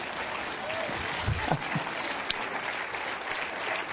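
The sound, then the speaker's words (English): An audience claps hands in steady, dense applause during a sermon, filling the whole stretch, with a few louder thumps and a brief bright clap standing out from the wash of noise. “Somebody ought to clap your hand and give me a break.”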